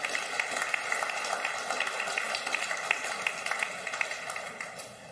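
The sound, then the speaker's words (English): A church audience applauds its serving teams with dense, steady clapping that holds at an even level for several seconds, then tapers slightly at the end. No voices stand out. “Would you give everybody a round of applause for all their serving?”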